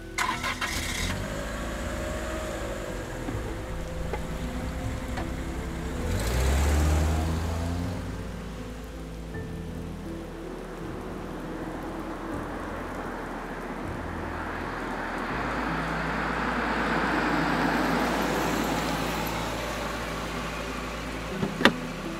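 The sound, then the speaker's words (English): A small car engine cranks and starts, then revs and settles into a steady running drone as it drives off, with a soft hiss of rain in the background and no voices. “If I gotta sit in this tiny car, then I'm driving.”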